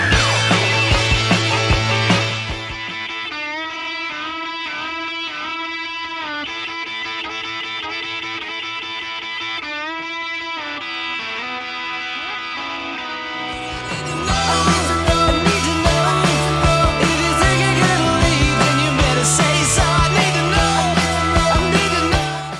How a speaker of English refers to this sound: And here's the guitar solo